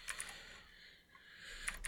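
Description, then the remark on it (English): Quick, light clicks of someone typing on a computer keyboard, filling in an Excel planning sheet, a steady patter of keystrokes with a brief lull midway, no voices. “Sorry, I'm typing something.”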